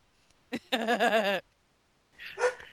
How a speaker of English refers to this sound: Sorry about that. The dog agrees too.